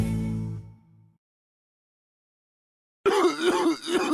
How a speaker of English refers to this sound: Sounds like you got a nasty cough.